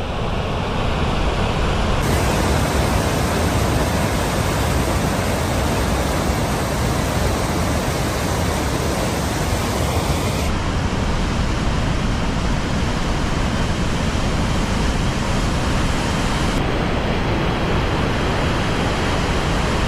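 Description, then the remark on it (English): A loud, steady roar of fast-flowing river water rushing continuously, a dense churning wash with no voices and only slight shifts in tone over the twenty seconds. “I would hate to think of what would happen if you actually fell into the river right now.”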